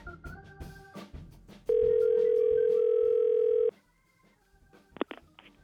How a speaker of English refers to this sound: So let me get this Gary Campbell on the phone.